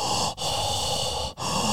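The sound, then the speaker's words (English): Someone imitates heavy mouth breathing, loud rasping breaths running almost continuously with two brief catches between them, and no talking. “the old telephone hanging in the basement saying they are nervous that it will start ringing in the middle of the night, only to hear the sounds of heavy mouth breathing on the other end.”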